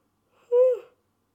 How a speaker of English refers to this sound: I'm going to yawn, and normally I cut this out. Sorry.